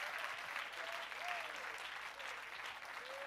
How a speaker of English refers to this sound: Clap your hands unto the Lord and give him praise.